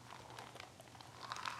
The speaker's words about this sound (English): Sorry if I'm chewing ice and it hurts y'all's ears.